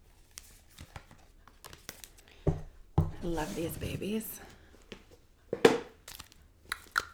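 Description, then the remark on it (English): Rustling and crinkling as a deck of cards is pulled out and shuffled in many different ways, with scattered sharp snaps and riffles; a person sitting on the floor of an office speaks briefly partway through. “And shuffling them up.”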